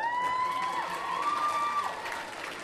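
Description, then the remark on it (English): At a school event, a crowd claps for everyone after teachers praised how they all looked, while high-pitched cheers and whoops ring out over the applause, keeping a loud, continuous wash of noise from start to finish. “Clap for everyone, people.”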